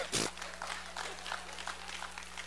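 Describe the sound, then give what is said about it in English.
An audience claps in a steady, dense patter after a sharp loud burst at the start, the applause staying fairly even and moderately loud throughout, with no voices clearly heard. “If you're clapping, that just means I've liberated you, and you can be honest.”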